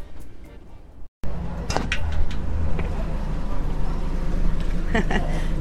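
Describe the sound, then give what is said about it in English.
A work boat carrying about five men in construction uniforms churns past on a canal in Venice in the morning, its engine a steady low rumbling drone with scattered clanks and splashy bursts, after a brief cut near the start. “Another work boat going by.”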